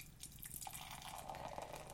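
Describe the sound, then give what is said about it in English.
Dark brown beer pours steadily from a can into a glass, a continuous gurgling splash whose pitch rises slightly as the glass fills, with no voices. “And the pour?”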